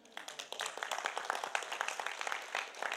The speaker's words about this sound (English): Someone needs to give Father a round of applause.